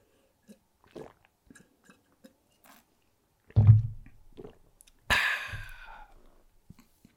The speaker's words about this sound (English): My throat's going to get a little bit dry throughout this video, so I'm just going to take a couple sips of water. So sorry about that. Just give me a second.